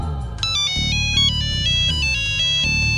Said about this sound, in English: "Whoa! This looks like a smart tablet." Zap found the origin of the ringtone, a small square tablet.